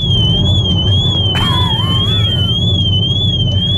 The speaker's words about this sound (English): He was driving to work earlier on this morning, and we did a bit of tinkering around with his car, and he's able to drive it, but his alarm keeps going off.